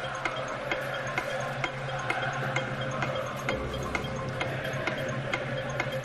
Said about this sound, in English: Oops, I forgot to start the countdown clock.